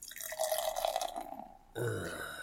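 Dark amber ale poured into a glass: a steady, gurgling stream for nearly two seconds, then a sudden shift to a fuller, foamier sound as the glass fills and a creamy white head forms. No talking.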